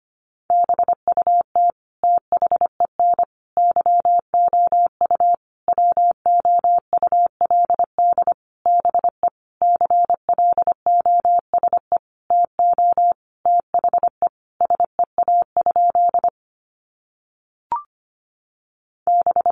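Rapid Morse code at about 25 words per minute, sending sentences built from the top 300 words: a single steady mid-pitched tone keyed into quick short and long beeps, pausing briefly near the end with one faint click before resuming.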